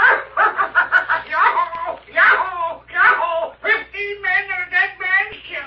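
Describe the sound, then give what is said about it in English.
A loud parrot calls in a rapid run of harsh, squawking bursts, almost laugh-like, with brief pauses between the chattering phrases. “He's the loudest parrot I ever heard.”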